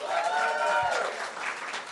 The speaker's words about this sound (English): Okay, so just by round of applause, who has been to a live show here before? Yes?